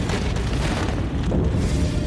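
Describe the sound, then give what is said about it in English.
A massive explosion of a burning freighter's flammable cargo in a port rumbles loud, a deep, sustained roar of low booming energy that holds steady throughout without breaking into separate blasts. “But mere minutes later, the deadly combination of fire and the Grand Camp's flammable cargo results in a massive explosion.”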